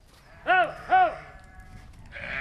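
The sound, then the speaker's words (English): A sheep bleats twice in quick succession, two loud, wavering calls at a sheep farm in the North Leitrim Hills, close to the Donegal border, followed by a quieter stretch of outdoor background noise. “I began at a sheep farm in the North Leitrim Hills, close to the Donegal border.”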